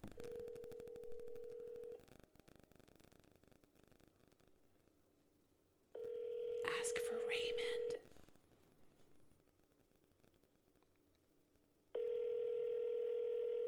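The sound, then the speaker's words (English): Outgoing phone call to a TextNow number ringing over a speakerphone: three steady ringback tones, each about two seconds long, separated by pauses of roughly four seconds, fairly loud against a quiet background. “I'll put it on speakerphone.”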